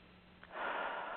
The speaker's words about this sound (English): And breathing. And you're just giving yourself that space of seconds to minutes to just be. It's like an instant energy reset.